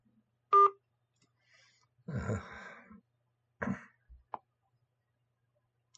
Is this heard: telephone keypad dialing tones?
yes